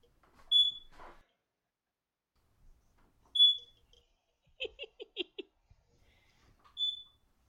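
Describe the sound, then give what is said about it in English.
A smoke alarm chirps three times, each a short, sharp, high-pitched beep spaced about three seconds apart, with a brief flurry of quieter chattering sounds between the second and third beeps. “Do you hear this beeping? Yeah. It's been going on. I think we have a fire happening.”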